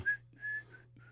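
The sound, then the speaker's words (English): A person whistles a short tune, a few clear sustained notes in quick succession with brief gaps, over a low steady hum and no talking. “Here, scroll through these real quickly while I whistle a tune.”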